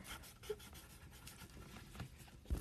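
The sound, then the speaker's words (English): Soft, steady scratching of colored pencils moving across paper while drawing a plant, quiet, with a couple of light taps near the end and no talking. “Okay, so let's just say the colored pencils didn't exactly help, but it's fine.”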